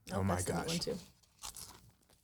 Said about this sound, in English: Oh, my gosh. You guys hear that? It's so crunchy.